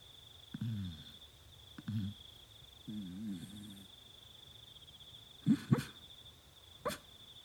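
A small dog, Arlo, lets out soft, muffled woofs and whimpery yips while dreaming, in a handful of irregular bursts, quiet, over a faint steady high-pitched whine in the background.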